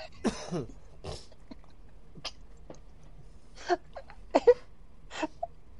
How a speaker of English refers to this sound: I could just hear that cough, like what, like scratching at the back of your throat. It's just wanting to come out.